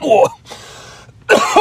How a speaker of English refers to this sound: Jesus. Yeah, sorry about that. Yeah, I really don't mean to be coughing and burping and carrying on, but yeah, sickness. That's my excuse.